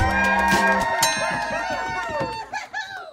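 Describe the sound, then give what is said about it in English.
A crowd cheers and whoops loudly over scattered clapping, a dense, continuous roar of voices that holds steady for a few seconds before thinning out at the end. “We don't have the bodies to not have everyone applauding.”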